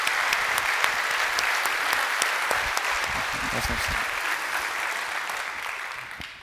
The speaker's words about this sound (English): If you would, give them one more round of applause before they go.